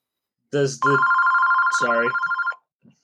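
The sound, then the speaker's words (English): A telephone rings with a steady, warbling electronic trill lasting about two seconds, loud, with brief bursts of a voice cutting in at the start and partway through. “It seems his phone has taken him.”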